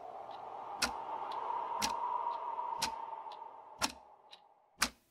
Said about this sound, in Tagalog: Napakatahimik ng paligid ng oras na yon. Tunog lang ng kuliglig at tiktak ng relo sa dingding ang aking naririnig.